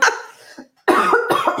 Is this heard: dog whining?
no